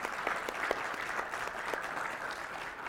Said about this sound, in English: And can we just clap for that?